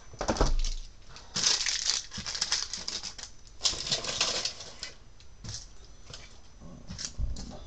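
Crinkling plastic and paper trash being crumpled and thrown away before a session starts, in several bursts of rustling, crackly noise with short pauses between, fairly loud and with no one talking.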